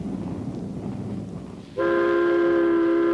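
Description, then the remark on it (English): An elevated train in New York City rumbles along with a low, noisy clatter, then a loud, steady horn blast cuts in and holds to the end, dominant. “Ride the elevated train all the way from the Battery far uptown.”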